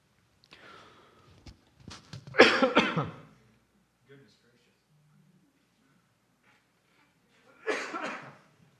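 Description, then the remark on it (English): A fit of harsh coughing during a worship service: a cluster of rough coughs and throat-clearing, a few seconds of near quiet, then another strong burst of coughs. “It's not the first coughing attack I've had in a worship service, as some of you remember.”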